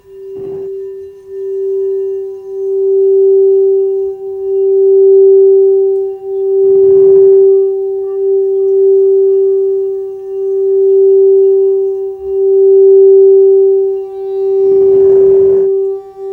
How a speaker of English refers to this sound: Now let's tune into these tones together. This is the throat chakra tone, G.